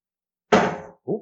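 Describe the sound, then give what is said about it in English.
A single solid thunk from a chair being bumped, loud, with a short decaying rumble, followed a moment later by a brief, softer sound. “It's my chair.”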